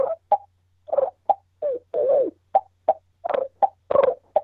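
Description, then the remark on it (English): A human voice imitates a turkey purr: a series of soft, short rolling bursts, some stretched into longer warbling trills, in an uneven rhythm with brief gaps and no talking. “I can purr.”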